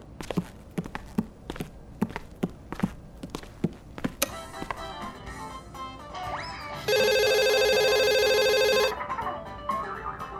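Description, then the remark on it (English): A phone rings loudly in one sustained two-second electronic trill, after a run of steady, regular footsteps and a few clattering household sounds. No one speaks. “I'm taking my phone with me in case Dada calls again”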